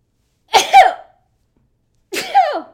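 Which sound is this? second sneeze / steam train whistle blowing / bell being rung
second sneeze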